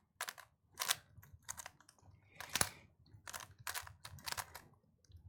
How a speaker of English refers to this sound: Okay, so DJ Michelle solving a Rubik's Cube. The timer begins now.